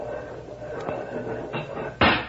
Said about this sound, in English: Here. Let's open the back doors on the truck.